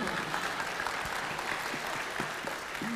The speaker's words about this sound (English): Everyone give them a big round of applause.